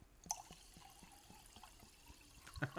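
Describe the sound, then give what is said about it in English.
Close-up fizzing of carbonated water held right in front of the microphone, a steady crackle of tiny bubbles popping in quick irregular ticks, fairly quiet, with a couple of sharper pops near the end and no voices. “Yeah, I want to put this a little bit right in front of the mic, because I want to that you're hearing actually the carbs.”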